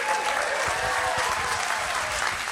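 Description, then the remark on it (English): An audience claps and cheers for baptisms at a family celebration day, a dense, steady wash of applause with scattered whoops running loudly and evenly from start to finish. “We can cheer for baptisms.”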